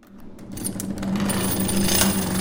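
An engine turning machine, used at Yard Lead since 1946 and worked on pulleys, grinds and cuts a pattern steadily into metal, with a low droning hum beneath a scratchy, rattling texture that builds in loudness and holds, plus a thin high whine. No voices.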